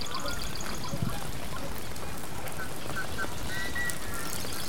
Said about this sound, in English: See this sound? Now there's several sounds out here. So the one that sounds like an old antique car horn is the yellow-headed blackbird.